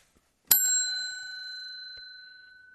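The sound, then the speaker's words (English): A single bicycle bell is struck once, giving a bright metallic ding whose clear tone rings on and slowly fades. It sounds alone against near silence. “Ding-a-ding-a-ding. There is no bell in the Mazda.”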